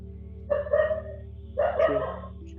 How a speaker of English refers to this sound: We have a dog barking, so okay.